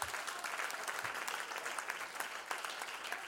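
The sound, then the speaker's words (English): A church audience claps steadily and densely in sustained applause, a hand clap of praise to the Lord, many hands blending into a continuous patter without pause. “Can anybody give the Lord a hand clap of praise for that?”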